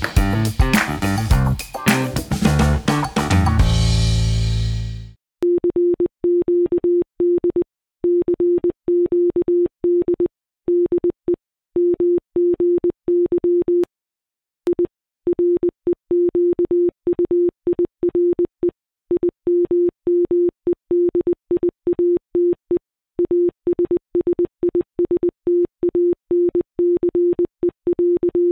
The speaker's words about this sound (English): What you just heard is a pretty chilling recreation of the message CQD, CQD, the distress call, this is Titanic, I require immediate assistance. One of the hundreds of wireless messages fired out from the Titanic's wireless radio room 109 years ago